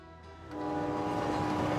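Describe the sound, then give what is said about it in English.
A train from New Jersey, headed to a Giants game, rumbles by while its horn sounds a steady, sustained blast that swells louder after a brief moment, with no voices present. “On the train from New Jersey to the Giants' final game, Bobby was in a sour mood.”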